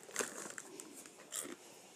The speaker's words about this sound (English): Well, this isn't the snack bag. This is a recent grocery bag. You're just gonna hear everyone crunch.